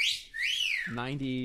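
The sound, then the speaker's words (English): A person in a studio whistles a single bright, sliding note that swoops up and then falls away, fairly loud, followed immediately by a voice starting to speak. “Somebody in the studio finally whistled after”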